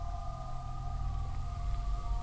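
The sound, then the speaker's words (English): A faint, eerie whale-song chord, heard as a key touches the surface of water, holds steady over a deep, almost subsonic low groan, the sustained tones droning continuously with no voices present. “When I touched the key to the surface of the water, the faint chord of whale song turned into a low groaning noise, almost subsonic.”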